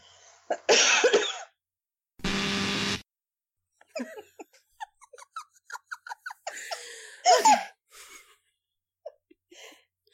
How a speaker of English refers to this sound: And I have to cough.